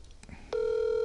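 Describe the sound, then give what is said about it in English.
Faint background murmur gives way to a sharp click, then a steady, loud telephone tone sounds as a live phone call to the speaker's mother is placed, holding unbroken through the final half second. “First live call in the pod.”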